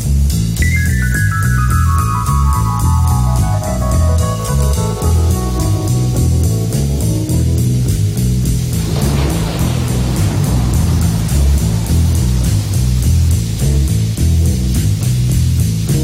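A rock song reworked in a bright major key plays loudly with a steady, driving beat. An opening phrase slides downward over several seconds before the full band fills out, with no singing.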